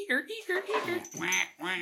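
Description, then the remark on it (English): Croaky, quack-like glugs as whiskey is poured from a bottle, four or five honking bursts in quick succession, fairly loud, with a nasal, almost vocal tone. “It's a built-in duck call.”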